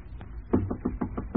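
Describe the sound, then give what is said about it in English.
About six steady knocks on the door of a train compartment, evenly paced, over a low constant rumble in the background. “Hello, hello in there. Nobody home? Try the door.”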